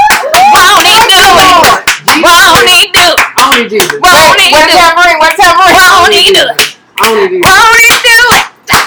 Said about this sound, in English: So my auntie and uncle have been married 32 years. My mom and dad have been married 34 years. And the same week. So can we give them a hand clap? Yes. Hallelujah. They made it.